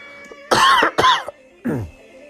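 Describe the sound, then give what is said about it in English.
Three loud coughs in quick succession: two sharp bursts back to back, then a short pause and a final rougher, throatier cough, against a faint steady background hum. “Excuse me while I cough.”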